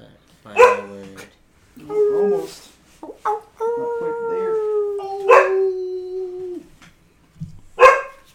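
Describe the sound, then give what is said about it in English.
A dog named Ray lets out a long, wavering howl that holds a steady pitch for a few seconds, broken up by several sharp barks and short yelps before and after. “Pause for extraneous audio. Ray's trying to chime in on the podcast.”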